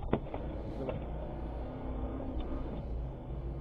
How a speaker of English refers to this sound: Oh, that must be an armored truck. No, this is a cash in transit vehicle. Bro, yeah. In South Africa.